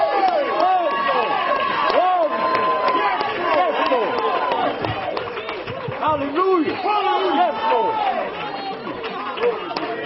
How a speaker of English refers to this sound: My God, I need somebody to clap in Him. I need somebody to shout in Him.